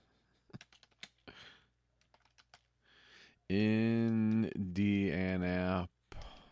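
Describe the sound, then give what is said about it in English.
Quick, irregular keyboard typing clicks patter quietly for a few seconds, then a loud, drawn-out voice cuts in and drowns everything out. “I can hear the typing.”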